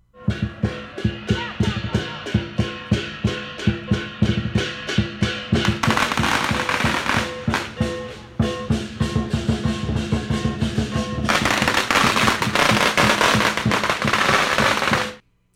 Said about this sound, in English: Those were sounds of teams of lion dancers going store to store in Chinatown here on Oahu. We were there last February on River Street.